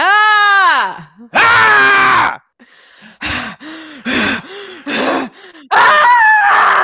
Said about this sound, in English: That scream that we're doing, if you didn't watch the race, and good Lord, you need to go back and at least watch that part,